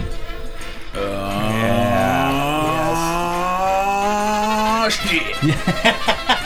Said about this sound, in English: Oh, that's a hot horn. That's a hot horn.